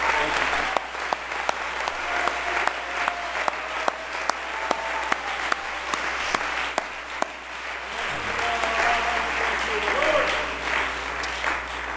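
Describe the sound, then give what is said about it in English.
A crowd at the Mile High Conference applauds steadily for about twelve seconds as a hand clap of praise to the Lord, a dense wash of many hands clapping with a few sharp louder claps standing out, and faint voices murmuring underneath. “Why don't we give the Lord a good hand clap of praise?”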